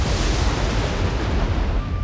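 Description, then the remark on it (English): A loud, rolling thunder crack from a lightning bolt striking and cracking the center of a table in a courtyard during a storm: a dense, deep rumble with harsh crackling noise on top that roars steadily for about two seconds, with no voices. “A bolt of lightning shot down, cracking the center of the table.”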